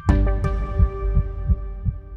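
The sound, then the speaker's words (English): A heartbeat-like turn signal sound for a Rivian vehicle: soft, low thumps repeat in a steady pulse at a quick, even pace over a sustained humming tone, with a brighter click near the start and no voices. “We started to think the turn signal is really like the heartbeat of the vehicle.”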